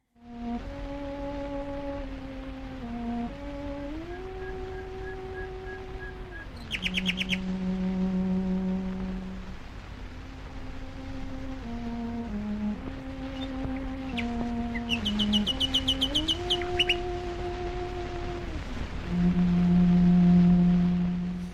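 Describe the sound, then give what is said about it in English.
A bowed cello plays a slow, sustained melody while a nightingale sings bursts of bright trills and rapid chirps above it, the bird's phrases coming in short clusters. This is a live duet recorded in a garden about 90 years ago. “What you've heard is a duet between the British cellist Beatrice Harrison and a nightingale”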